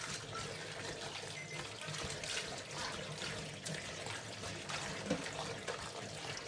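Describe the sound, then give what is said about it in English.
Spring water from a 5-liter jug pours steadily over salted vegetables in a strainer as they are rubbed to wash off the salt, a continuous splashing trickle with small irregular spatters, lasting the whole stretch without any talking. “So I'm just pouring water into the strainer and I'm just rubbing them.”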